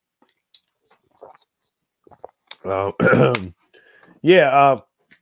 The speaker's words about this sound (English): Excuse me for a second. I got to take a quick drink of water.